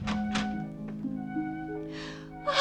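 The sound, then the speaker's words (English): Short, breathy intakes of air, a couple early and a louder, sharper one at the end, like a woman gasping in shock, over a soft sustained tonal hum; a landlady gasping as her lodger stands swaying in the doorway. “She gasped because Pierre was her favorite lodger, and he looked terrible.”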